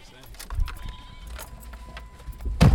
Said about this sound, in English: at one point, he grabbed a particularly fickle ram and lifted him quite awkwardly into the van and slammed the door shut behind him.